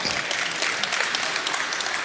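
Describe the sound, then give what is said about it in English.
A crowd claps steadily, a dense, even wash of many hands applauding at a consistent loudness for a couple of seconds, with no voices standing out above it, applauding a remark about dads' old man strength. “That lasts, yeah, you can clap for that, yes.”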